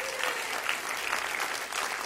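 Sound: audience clapping hands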